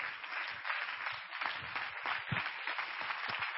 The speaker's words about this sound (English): Praise the Lord, everybody, and clap your hands unto the Lord.